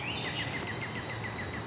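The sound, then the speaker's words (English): A northern parula sings a very fast warble, a rapid run of thin, high notes that quickens toward a squeaky finish, heard faintly over a steady background hiss with no talking. “It's doing a very, very fast warble that accelerates to a squeak.”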